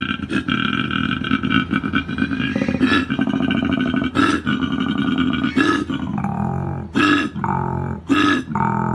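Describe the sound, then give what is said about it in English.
A koala bellowing: a loud, deep, rasping call that snores and belches continuously, broken by sharper grunting bursts every second or so, with no talking. “That was a koala.”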